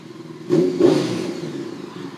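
A motorcycle, a 919, being parked behind a car revs with two quick throttle blips followed by a steady, rumbling idle that gradually settles.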